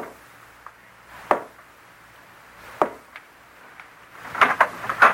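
Soft knocks on the wooden door of Sir Henry's room at about 2 o'clock in the morning: two spaced taps, a couple of fainter ones, then a quick cluster of four at the end, a prearranged signal. There is no speech.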